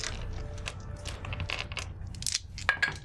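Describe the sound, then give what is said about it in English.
Three six-sided dice rattle and tumble across a hard surface, a quick flurry of clicks and clatters that settles after a few seconds, with no talking. “Do a 3d6.”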